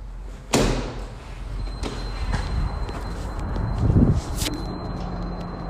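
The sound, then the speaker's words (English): Doors bang and slam several times at irregular intervals, a loud slam first, then smaller thuds and a rattling clatter, over a steady low background hum. “What's up with them in these doors?”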